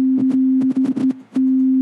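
A steady, low-pitched pure sine tone hums almost continuously, briefly fading out partway through, with scattered short clicky bursts of noise over it.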